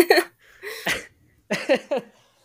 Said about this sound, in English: Sorry, I'm like a little bit sick right now, so I'm going to be coughing, but I should have said that.